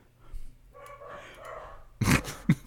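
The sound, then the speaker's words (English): A dog growls low and steadily for a moment, then lets out a loud burst of barking followed by one more sharp bark, with no one talking. “Jared's dog starts barking.”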